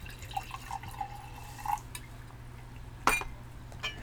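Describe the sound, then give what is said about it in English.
Red wine trickles into a glass, a soft pour with a thin ringing tone lasting about a second and a half, followed by a single sharp glassy tap against a low hum. “Gotta pour the wine because everything is just a little bit better with a beautiful glass of red wine.”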